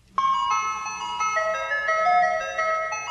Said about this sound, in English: Let's talk about the ice cream truck song that we all know that goes through our neighborhood. Sounds like this.